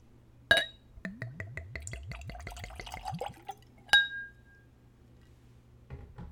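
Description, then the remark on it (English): A sharp glass clink, then whiskey glugs rapidly from a bottle into a Glencairn nosing glass, the gurgles rising in pitch as it fills, followed by another bright ringing clink. Clear, with no talking. “And now for the pour.”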